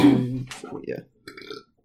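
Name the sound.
burp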